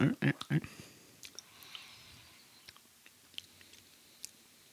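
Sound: sipping coffee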